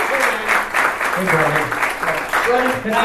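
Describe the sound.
A crowd breaks into steady applause for a guest being introduced, a dense wash of clapping that holds at a fairly loud level throughout, with voices murmuring and calling out underneath.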